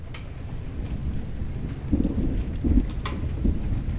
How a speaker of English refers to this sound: What a storm! It must be the biggest storm ever!